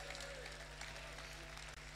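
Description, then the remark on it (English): An audience claps steadily for the Lord Jesus, dense and continuous applause filling the whole moment, with a low hum underneath and faint voices mixed into the crowd noise. “Clap for the Lord Jesus.”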